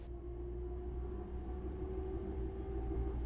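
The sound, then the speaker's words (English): Steady low rumble of a moving passenger train on the way up to Glasgow, Scotland, heard from inside a carriage, with a constant mechanical hum and faint rattling, continuous and even throughout with no voices. “So, I'm just on the train on the way up to Glasgow”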